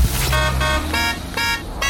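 A call-in beep on the radio show Room 104, the cue for listeners to phone in: a run of four or five loud, buzzy, horn-like electronic tones in an uneven stuttering rhythm, heard alone over a low steady hum.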